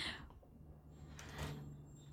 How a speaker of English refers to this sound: they changed their mind. The garage is so full. They changed their mind. They shut the door. Who robs you and then shuts the door?